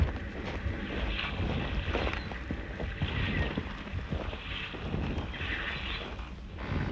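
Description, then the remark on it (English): A boat on open water near a landing, with a steady low rumble, sloshing and wind buffeting the microphone, continuous throughout, with no voices. “Just the other side of the landing. See his boat?”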